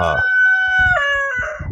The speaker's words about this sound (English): Holy shit. What was that? Yeah, that was my rooster, Diego.